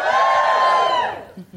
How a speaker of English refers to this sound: So give me a cheer if you already read Standard Issue.